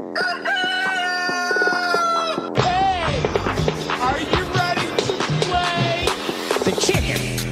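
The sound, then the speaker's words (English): A loud, clear rooster crow sound effect played from a soundboard rings out, followed by a busy burst of overlapping sound-effect noise with sharp clattering hits and a voice mixed in. “I got the sounder. Here we go. Let's play the chicken.”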